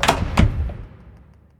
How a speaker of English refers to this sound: With his mind, the vampire Tyrone slammed and locked the bedroom door.